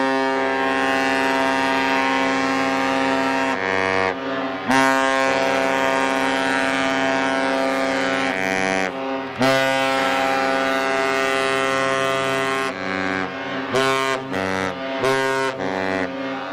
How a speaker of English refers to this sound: So Richard Hall from Iowa helped us out big time. He digitally dubbed the dual horn for us. Here's that one.